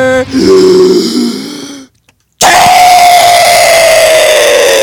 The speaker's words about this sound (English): Do I put a warning next time before you start screaming?